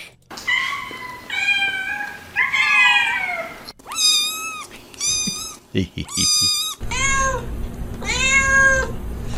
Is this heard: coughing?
no